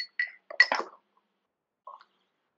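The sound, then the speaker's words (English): Glasses clink together in a St. Patrick's Day toast, a few bright, ringing taps clustered in the first second, followed by a single softer tap after a short pause. Fairly quiet, with no talking. “All right, happy St. Patrick's Day. Cheers”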